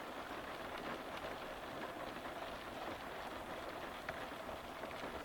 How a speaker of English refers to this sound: With the gloomy skies outside, rain now lashing against the window, the warm glow from the lamp is a welcome visual addition.